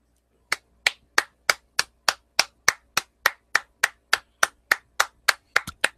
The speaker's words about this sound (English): I have no words. I'm just clapping. Like, I knew it was going to be a great match.